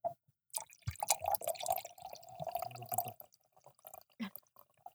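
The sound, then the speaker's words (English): Wine drips and trickles after being poured, with an irregular patter of drops and a brief steadier liquid stream in the middle before a few last scattered drips. “Oh, God, it's dripping.”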